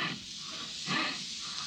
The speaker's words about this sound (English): Well, that's the sound made by the hands of another housewife when she runs them over her husband's face. Rough and cracked, you see.